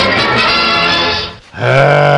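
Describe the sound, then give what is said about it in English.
A loud pig oink sound effect in two bursts: a long, rough, buzzing grunt, a brief break, then a steadier, more tonal squeal-like oink. No one speaks over it. “You don't play the pig, people aren't happy.”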